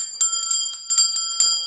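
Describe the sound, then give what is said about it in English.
A small hand bell rings in quick, repeated shakes, bright sustained metallic tones chiming in bursts for under two seconds, loud with no talking. “I'm gonna ring the bell because you know what?”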